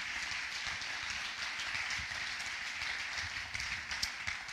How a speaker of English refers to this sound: Let's clap our hands and thank God.